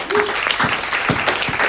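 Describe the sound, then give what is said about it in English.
An audience at Trinity Church breaks into steady applause to thank people for working on the church website, a dense, even patter of many hands clapping at a fairly loud level throughout, with a faint voice or two mixed in beneath. “Give a round of applause for working on our website.”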